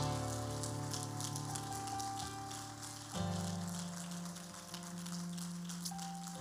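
audience clapping hands

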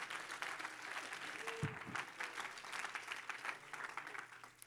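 audience clapping hands

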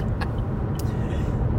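car interior noise

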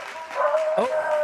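dogs barking and whimpering

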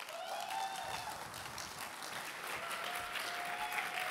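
audience applause and cheering

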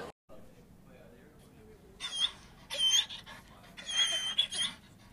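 dog sounds

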